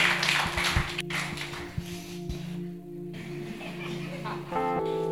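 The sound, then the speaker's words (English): A crowd claps for a woman in a dense, steady burst that gradually thins out, with some voices and a sustained tone near the end. “Come on, clap for her.”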